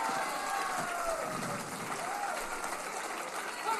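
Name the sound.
crowd cheering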